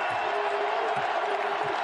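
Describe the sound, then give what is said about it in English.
An arena crowd at the 2021 Braggin' Rights basketball game between Illinois and Missouri cheers in a loud, steady roar as it rises to its feet, a dense wash of many voices that holds at the same level without a break for about two seconds. “Once he gets it across the timeline, the crowd will rise to its feet. Here they go on cue.”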